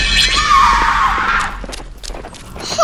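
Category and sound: animal, horse neighing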